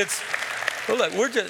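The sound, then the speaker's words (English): An audience claps their hands to the Lord together in a dense, steady wash of applause that fills the first half, then a man's voice begins speaking as the clapping carries on softly underneath. “We can clap our hands to the Lord.”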